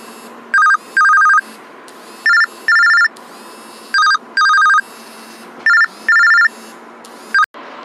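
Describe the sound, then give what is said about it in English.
A telephone rings repeatedly with an incoming call during a recording session, each ring a short burst followed by a longer one in a steady double-pulse pattern, loud, with no one speaking. “I got a phone call in the midst of recording this episode.”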